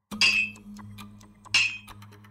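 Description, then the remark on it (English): Two sharp, ringing metallic strikes, about 1.4 seconds apart, each a bright clang with a short shimmering decay over a low steady hum, as Ramage strikes coins by hand for the mint in 1651, swinging a hammer onto a top die held over a blank coin (planchet) on the anvil die. “Ramage made the coins in the way that they always had, using a hammer and his own hands.”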